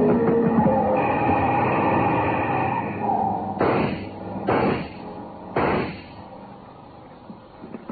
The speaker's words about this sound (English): But that car just pulled away from this joint. Maybe it was the Sammy Lee who tried to bump us out.